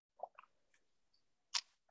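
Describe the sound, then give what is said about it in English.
Quiet mouth sounds of someone sipping water: a few soft wet clicks and slurps, then one brief louder gulp-like burst, with no talking. “I've got a little tickle on my throat. Yep. But still there, I'll get some water.”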